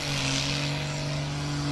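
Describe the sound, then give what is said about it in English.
A loud, steady engine drone from a first-generation diesel truck with a hood stack and bigger swamper tires, spooling up at high revs for a burnout in a pit, heard from about 100 yards away, with a harsh hissing rush over it as tire squeal starts. Continuous, with no voices. “I hear the squeal starting.”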